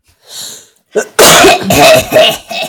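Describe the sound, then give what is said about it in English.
A soft breathy intake followed by a burst of loud, harsh coughing, several rough coughs in quick succession, prominent, with no talking. “Are we all done coughing?”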